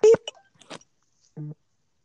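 A short, low buzzy phone beep sounds once near the end, after a few brief clicks and rustles, moderately loud, with no talking over it.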